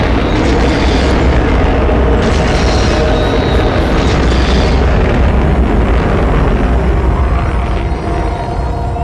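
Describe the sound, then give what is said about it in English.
A rocket blasting off, with a continuous, loud, rumbling roar that fills the whole clip. Deep crackling thunder holds steady for several seconds with no voices. “Which is exploding at the bottom. Oh, it's a rocket. It's taking off.”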